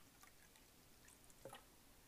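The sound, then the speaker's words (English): Quiet sipping of water: a few soft, wet liquid sounds, with a brief slurp near the end against a faint background hush. No one speaks. “So I just have to drink water.”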